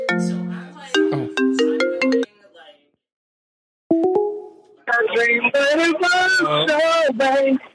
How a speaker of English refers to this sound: Oh, we have a phone call. Calling.